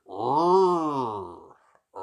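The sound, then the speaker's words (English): A single drawn-out rutting stag roar, a deep, harmonically rich groan that swells then tails off into a creaky, door-like rasp, followed by the start of another call. “That sounded like a really like a curious creaky door.”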